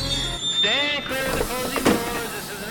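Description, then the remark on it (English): An A-train subway car rumbles along the rails, its wheels letting out a high, wavering metallic squeal that bends in pitch, steady for a few seconds. “grabbed her backpack on the seat behind her, and bounced out of the A-train car for her apartment in Washington Heights.”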